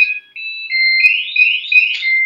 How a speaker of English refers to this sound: Okay, hold on a second. I'm just going to take the battery out. So my door was left open, and my lock system started beeping at me, telling me that, like, it's open, but I don't know how to, like, turn it off